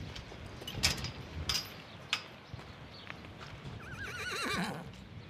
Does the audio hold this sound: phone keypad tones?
no